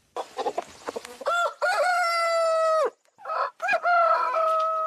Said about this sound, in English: A rooster crows, and the Minawao refugee camp comes alive.